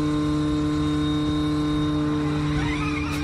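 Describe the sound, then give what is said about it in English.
A Dakar Audi rally car with about 670 horsepower and all-wheel drive drives with a thin, toy-like electric whir, like a remote-control car. A steady, fairly loud whine holds throughout and rises slightly near the end, with no talking. “This Dakar Audi rally car.”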